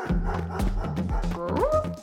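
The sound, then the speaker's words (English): A dog barks rapidly and excitedly while chasing a toy car down the road, a quick run of loud barks in an uneven rhythm, with one rising yelp near the end. “The car whizzed its way down the road, but the dog was still gaining on the car, getting closer and closer.”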